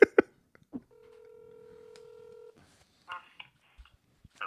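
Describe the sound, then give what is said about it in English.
A telephone keypad tone sounds as a call is dialed to phone a friend during a game show: a steady electronic dual-pitch beep held for over a second after a few sharp clicks, followed by faint rustling and short taps. No one speaks. “I'm going to phone a friend.”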